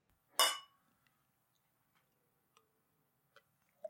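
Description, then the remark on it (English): Beer glasses clink together once in a toast, a bright, sharp chime, followed by quiet stillness and a few faint small taps. “Cheers. Well poured.”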